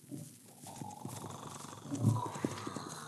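Hooves thud and clop in an uneven rhythm as a horse carrying a dummy rigged to look like the Headless Horseman is sent toward a cabin. The sound grows slightly louder as it approaches, with a faint low rumble and scattered rustling in the background.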